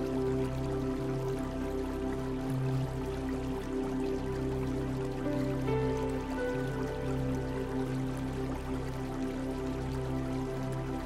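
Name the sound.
water flowing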